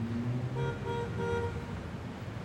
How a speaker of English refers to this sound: She frowned as she saw more and more of the new city. The air was full of smoke and pollution. She could not believe how loud the traffic was.